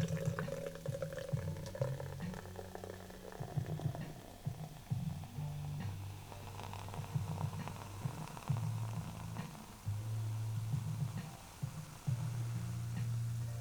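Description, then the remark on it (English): A carbonated drink is poured into a cup, a steady low gurgling stream under a constant crackling hiss of gas escaping from the cup that keeps going for several seconds, with no one talking. “That's not static. That's my drink's gas escaping the cup as I pour it.”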